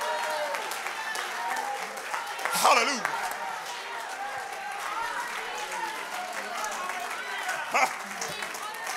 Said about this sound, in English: You ought to clap your hands and rejoice in the Lord.